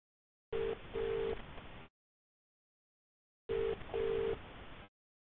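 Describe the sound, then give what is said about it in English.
A telephone calling tone heard through a phone line while calling a friend: two double-pulse rings about three seconds apart, fairly loud over a hissy, band-limited line, with no one speaking. “Okay, so I've just got to give my friend a call.”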